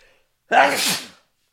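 A single loud sneeze bursts out sharply, a breathy explosive blast lasting under a second, followed by silence.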